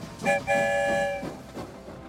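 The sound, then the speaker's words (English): A train horn gives a short toot followed by a longer sustained blast over a steady rumble of a train rolling along, as if passing through a tunnel. “I wonder where the story train will lead us this time. Here comes the end of the tunnel.”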